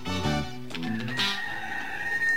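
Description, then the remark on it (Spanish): A neighbour's rooster crows once, a drawn-out, strained call that holds a high, steady note toward the end, with some lower tonal sounds mixed in at the start. “¿Y el gallo?”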